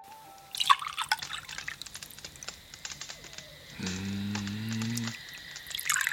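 Juice is poured into cups, measured carefully so each gets the same, in the evening by a campfire in an old pot on a scrap heap: scattered drips and splashes first, then a steadier, low-pitched stream of liquid lasting about a second before fading into soft trickling. No one speaks.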